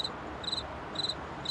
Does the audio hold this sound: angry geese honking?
no